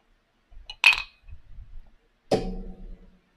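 Two glasses clink together in a toast, a bright, ringing tap followed by a second, fuller clink with a short resonant tail, surrounded by soft handling noises and no talking.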